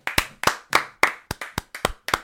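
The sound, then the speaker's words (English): Two standing people clap in a brisk, steady rhythm, about eight sharp claps in a couple of seconds, some landing almost together. No one speaks. “They're both standing for me. They're both applauding.”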